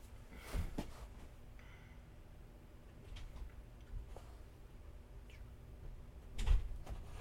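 door opening and closing

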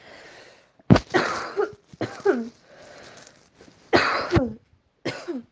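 woman coughing

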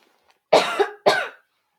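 coughing

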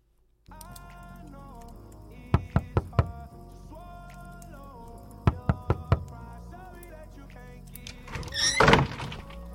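knocking on a door

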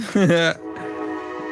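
train horn

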